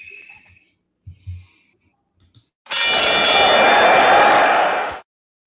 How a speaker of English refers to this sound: I'm going to ring the bell, and we'll get the show on the road.